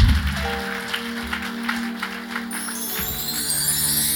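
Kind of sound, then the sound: crowd, audience clapping hands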